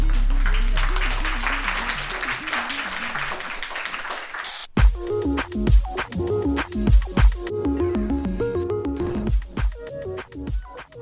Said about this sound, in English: So 22, thank you very much. And a round of applause.